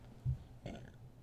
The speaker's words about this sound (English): Sorry, I got a burp. It's coming. There we go.